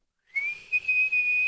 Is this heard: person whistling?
yes